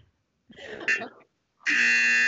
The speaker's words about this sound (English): Okay. So with that being said, I'm going to go ahead and use that buzzer mic.